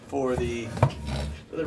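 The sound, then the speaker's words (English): Objects get knocked off and over in a studio, with a sharp, clattering knock near the middle and lighter rattling around it. A voice murmurs underneath throughout. “Knocking off shit.”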